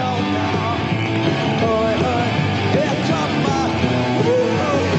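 A loud live rock band plays steadily throughout, with dense guitars, pounding drums and a raw, shouted lead vocal riding over the muddy, slightly muffled mix.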